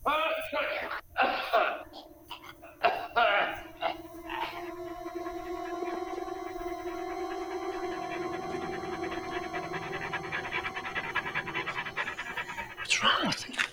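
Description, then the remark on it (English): A dog pants in quick, breathy bursts, then lets out a long, drawn-out whimpering whine that holds steady for several seconds before a final sharp breath. “Sounds like a dog.”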